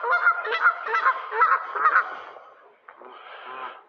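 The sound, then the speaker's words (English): Young Canada geese honk repeatedly in a dense, overlapping chorus of nasal calls, loud, tapering off briefly before a softer burst of honking resumes at the end. “Hey, geesies. Canadian geese.”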